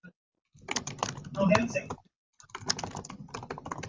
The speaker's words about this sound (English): Oh, we're getting a little bit of interference. It sounds like now we have some typing.